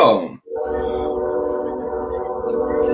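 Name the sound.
passing train with horn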